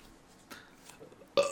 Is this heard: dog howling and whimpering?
no